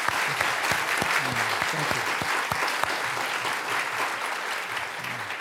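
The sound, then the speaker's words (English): Steady audience applause for Fox Butterfield and Warren Olney, a dense wash of many hands clapping at an even loudness throughout, with a few sharper individual claps standing out and a faint murmur of voices underneath. “But first, a round of applause for Fox Butterfield and Warren Olney.”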